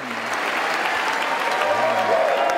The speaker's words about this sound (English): In December of 2022, Zelensky traveled to Washington to deliver a speech before Congress. As he walked to the podium, there were cheers and thunderous applause.